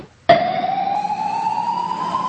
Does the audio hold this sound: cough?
no